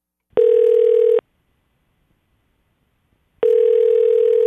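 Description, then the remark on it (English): Two steady electronic phone rings sound through the line, each just under a second long, separated by a couple of seconds of silence, the classic ringback of a phone call to a $1,000 Thursday prize winner waiting to connect. “So let us see if we can break the news to her via phone.”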